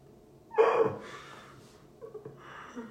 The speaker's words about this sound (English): just yawned, and it was actually terrifying for some reason.